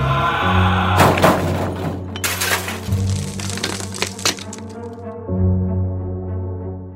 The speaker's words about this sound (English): she hears two loud thumps on a car and a sound like wood breaking